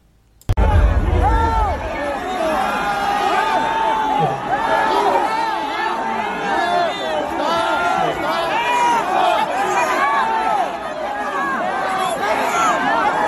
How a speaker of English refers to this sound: Now, that was a soundbite of people screaming for help.